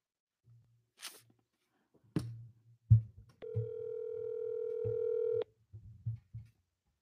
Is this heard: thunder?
no